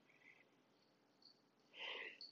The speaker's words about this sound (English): Excuse me, I think I'm finna sneeze.